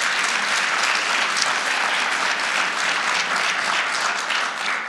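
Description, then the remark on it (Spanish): An audience applauds loudly and steadily, a dense wash of many hands clapping that holds at full strength for about five seconds with no voices rising above it. “Si lo cree, dar un aplauso fuerte, Señor.”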